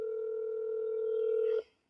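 A steady, continuous telephone dial tone hums at a constant pitch for about a second and a half, then cuts off abruptly, leaving near silence with a faint click.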